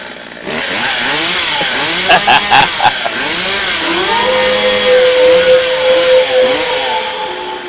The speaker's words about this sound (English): Sick ass motorcycle. Sick ass.